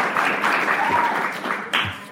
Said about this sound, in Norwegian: Jeg får se noen liten applaus.